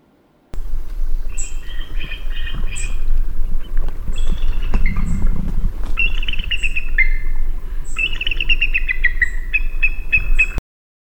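Bald eagle calls: a series of thin, high chittering whistles and piping notes, repeated in short bursts over low rumbling background noise, clear.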